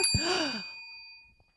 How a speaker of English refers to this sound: I just love that bell.